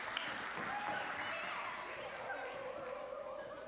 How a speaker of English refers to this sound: Guys, thank you so much for your help. Can everyone give them a big round of applause, please?